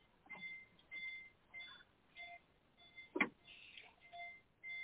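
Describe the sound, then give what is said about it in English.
Repeated electronic beeps sound at a steady pace in the background, fairly faint and thin, with a brief louder click or thump partway through and no talking; the beeping comes from a participant who has not muted themselves. “Hey, whoever's got the beeping in the back, mute yourself when you ain't talking.”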